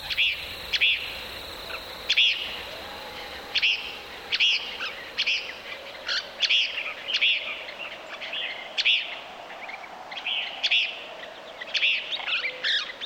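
Desert birds call again and again at dawn in quick, bright chirps, several voices overlapping at a steady clip, clear over a soft, low background hush, recorded by Bernie Krause at Gray Ranch, a nature conservancy easement in the panhandle of New Mexico.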